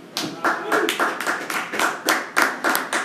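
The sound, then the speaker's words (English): A small audience gives a brief, sparse round of applause: about a dozen sharp hand claps in a loose, steady rhythm, fairly loud, with faint murmuring underneath. “Claps? Nothing?”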